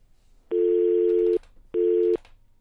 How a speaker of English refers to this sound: Two dial tones. Still can't figure that out.